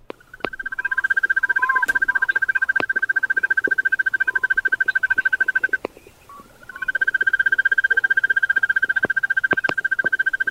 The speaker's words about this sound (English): And it basically rubs its pork and beans against its abdomen to create a chirping noise. And this chirping noise attracts females. And apparently it could be as loud as a full orchestra.